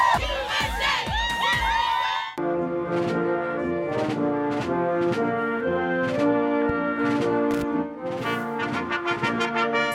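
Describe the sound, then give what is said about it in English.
A large crowd at the Today Show cheers and shouts loudly for a couple of seconds, welcoming the latest American Olympic medal winners, then breaks into a steady, rhythmic chant that continues at full volume with no clear speech. “It is fun to watch them get embraced by this crowd.”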